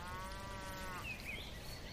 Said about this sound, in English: Cows.